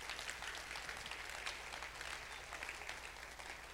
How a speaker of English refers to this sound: Clap for Jesus. Clap for Jesus.